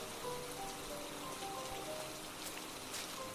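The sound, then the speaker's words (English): Steady rain falls on the ground in a continuous, even patter with faint scattered drips, moderately quiet, with no voices, heard from under a big tree with broad leaves. “So the rain was just falling and the ground smells so sweet.”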